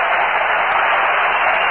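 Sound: stadium crowd cheering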